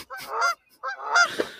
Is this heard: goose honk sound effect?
yes